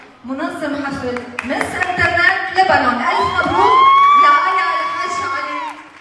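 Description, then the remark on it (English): A small concert crowd at a small, bare stage yells and cheers continuously for several seconds, with overlapping voices and a long, rising whoop standing out near the middle, loud throughout. “All that yelling, the stage is so like bare.”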